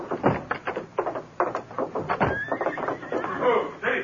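A big white stallion with no rider whinnies loudly and repeatedly while a rapid patter of its hoofbeats draws nearer beneath the shrill neighs as it comes down a slope toward the gates.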